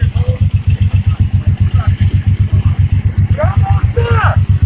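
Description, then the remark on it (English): A diesel truck engine runs in the background, a loud, steady low throbbing that pulses rhythmically for the whole stretch, with faint muffled voices surfacing briefly over it. “Is that a diesel truck in the background?”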